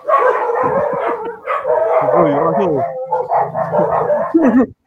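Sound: dogs barking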